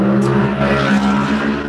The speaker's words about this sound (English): insert motorbike noise here. Sorry about that, dear listener.